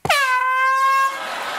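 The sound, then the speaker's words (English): A single loud air horn blast with a harsh, brassy tone, set off by accident while being cleaned, held steady for about a second before cutting off and leaving a short echoing tail. “I was just cleaning the air horn, John, and it went off.”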